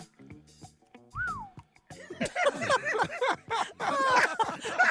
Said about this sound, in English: I like that whistle. I like the whistle.